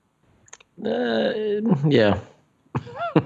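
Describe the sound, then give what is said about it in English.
A close, voiced throat clearing right into the mic, a drawn-out rasp with a rougher second push, then a short pause and a brief burst of voice. “I did not mean to clear my throat into the microphone.”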